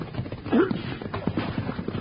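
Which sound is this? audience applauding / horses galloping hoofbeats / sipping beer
horses galloping hoofbeats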